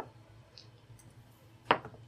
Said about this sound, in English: And everyone, roll initiative. Alright, it's been a while since I used any of these other dice.